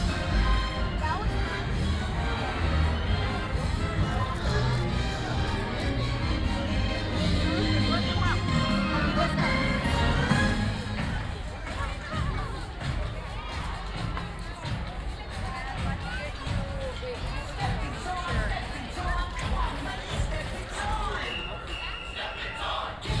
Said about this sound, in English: Hope you guys like the end of this parade, because you're going to be hearing it for about 5 minutes.